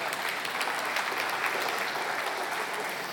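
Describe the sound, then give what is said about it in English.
An audience claps steadily, a dense wash of many hands applauding at even volume throughout, with no voices standing out over it. “That was a good place to clap.”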